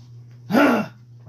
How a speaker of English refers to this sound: I had to clear my throat.